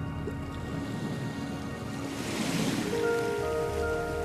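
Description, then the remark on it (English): Rain patters and drums steadily on rock and soil, a dense continuous spatter that swells a little louder partway through, with a faint sustained hum underneath. “Rain rattles and drums against rock and soil and seethes into water.”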